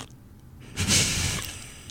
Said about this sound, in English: This is podcast violation of the highest order. She's on purpose chewing popcorn into the microphone.